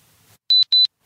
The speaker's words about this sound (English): The watch alarm again.